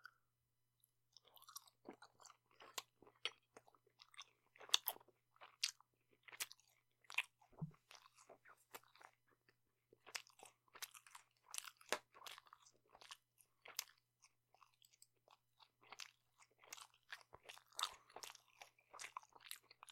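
Crunchy food is bitten and chewed, with sharp, irregular crackling crunches repeating steadily for the whole stretch and no talking.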